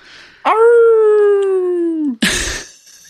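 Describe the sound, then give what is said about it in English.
A person imitates a wolf with one long, loud howl that holds steady and slides slightly downward, then breaks off into a brief, breathy burst of noise. “Do you want to howl?”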